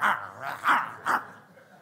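A dog barks about four times in quick, uneven succession, the middle barks loudest, on its own with no voices.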